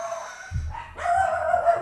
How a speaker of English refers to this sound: Not only do I get fired up about apparently it, apparently the dogs are pretty fired up.